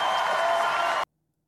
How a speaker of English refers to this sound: So that was the big applause line of the whole thing.